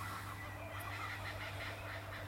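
Faint birds singing outdoors at 5:16 in the morning, their soft chirps blending into a steady low hum and hiss of background noise, with no voices present.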